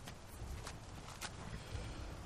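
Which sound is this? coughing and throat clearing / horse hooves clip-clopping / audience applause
horse hooves clip-clopping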